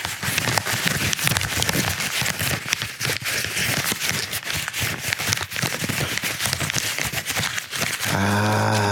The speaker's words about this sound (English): Okay. Hang on a minute. Now I'm going to crinkle some paper.